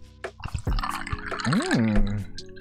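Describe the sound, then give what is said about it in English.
A drink is poured into a glass, with liquid splashing and gurgling for a couple of seconds and a faint ringing tone as the glass fills. “Let's pour it up.”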